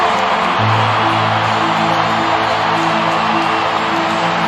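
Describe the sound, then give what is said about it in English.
A stadium crowd roars as J.J. Watt is introduced to the crowd, a loud, unbroken wall of noise for several seconds, with a steady low droning tone running underneath the din. “Now, J.J. Watt being introduced to the crowd. And listen to the roar.”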